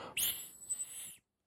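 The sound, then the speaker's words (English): A single shrill blast from a dog whistle used to train a dog, a piercing high-pitched tone held steady for about a second before cutting off abruptly, with no voices. “I have some dog whistles here. This is a dog whistle sound.”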